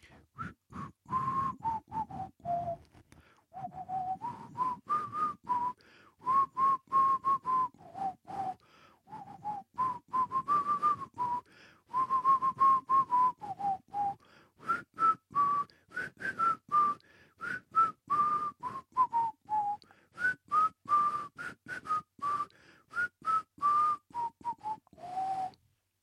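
A person whistles a catchy pop-style tune for about half a minute, clear, with steady phrases rising and falling and short breaths between notes, no talking.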